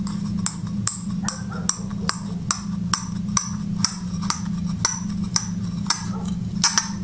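The stem of a portable plastic wine glass being screwed into its base, making a steady run of about sixteen small, sharp, high clicks over a low constant hum.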